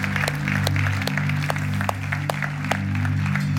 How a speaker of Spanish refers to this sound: Vamos a aplaudirle fuerte al Señor.